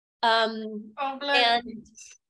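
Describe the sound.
A single loud sneeze with a drawn-out voiced build-up and a breathy burst at the end, heard on its own.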